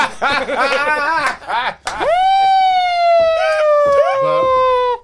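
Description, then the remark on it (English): A voice imitates a police siren: a couple of quick wavering whoops, then a long, loud, sustained wail that slowly slides downward in pitch for about three seconds. “Sir, bring in the police.”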